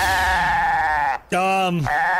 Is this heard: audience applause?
no